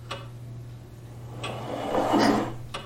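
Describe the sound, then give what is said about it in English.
Three sharp, isolated knocks spaced about a second and a half apart, moderately loud against a quiet background with a steady low electrical hum and a brief soft rustle before the last knock. “Knock if you're there.”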